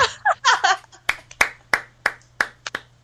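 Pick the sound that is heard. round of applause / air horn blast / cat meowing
round of applause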